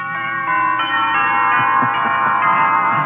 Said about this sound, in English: I understand. Wedding bells. Right.